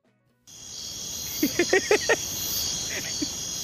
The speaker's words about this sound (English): just you and the damn crickets outside right now.